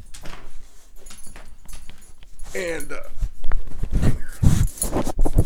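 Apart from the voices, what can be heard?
dog snorting and sniffing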